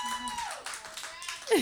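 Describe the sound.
An audience claps steadily in a dense, continuous patter, with a voice and some tonal sounds running over the applause, which swells slightly louder at the end.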